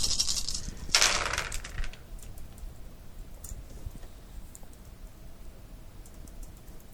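Dice clatter across a hard surface in two quick bursts of bright rattling clicks, the second louder, then settle into near silence with faint background hiss; the dice land stacked on top of each other, the top one showing 10.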